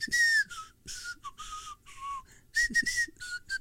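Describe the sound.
Someone whistles a short melodic tune from an old, roughly 1970s cartoon, a string of clear sustained notes rising and falling in phrases with brief breaths between them, with no talking.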